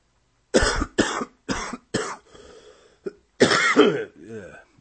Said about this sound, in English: Is that … cough coming back